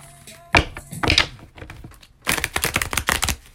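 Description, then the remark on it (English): A deck of tarot cards being shuffled for a tarot reading: two soft slaps of cards, a brief pause, then a rapid, crackling riffle of cards flicking together. No voices. “So, here I am doing the reading, okay? Let me go ahead and shuffle.”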